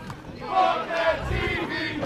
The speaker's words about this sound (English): Match just started. I'm hearing some people yell for Joel.